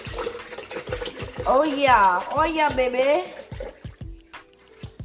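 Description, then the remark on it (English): Vanilla almond milk glugs steadily out of a container into a blender, a rhythmic pouring that runs the whole time while a person speaks briefly over it. “And I just poured a lot in there just so I can have some for later on.”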